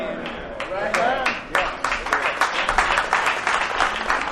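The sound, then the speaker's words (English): Sparse audience clapping, a thin scattering of hand claps with irregular rhythm, mixed with crowd voices and chatter throughout. “Whoa, the hand clap's getting thin.”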